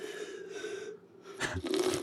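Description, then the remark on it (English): A short slurping sip from a can of Liquid Death breaks in after a quiet stretch with a faint steady hum, followed by a soft breathy swallow. “Can I have a sip first?”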